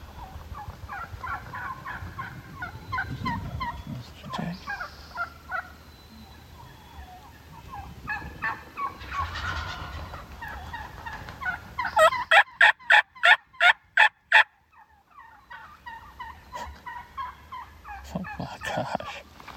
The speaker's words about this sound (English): Here comes the gobblers. There's one. There's two. I know those are the gobblers.